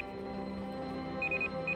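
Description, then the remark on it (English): A school warning bell rings steadily from inside the school building, a dense, buzzing metallic tone with a bright, high pitch that pulses in short bursts toward the end. No one speaks. “From inside the building, the warning bell.”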